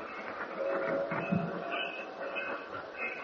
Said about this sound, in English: Well, it wasn't a very long ride. No, only 1 hour. This is fast train. Some trains take 1 hour and 40 minutes.